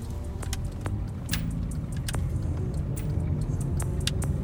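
A car makes a turn in the morning after traffic clears, with a steady low engine and road rumble heard from inside, punctuated by a few sharp clicks and rattles, with no one talking.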